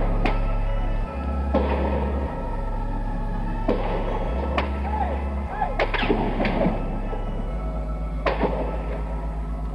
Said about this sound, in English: Ambulances screaming all over the city, and more sounds, more shots being fired at the tower and from the tower.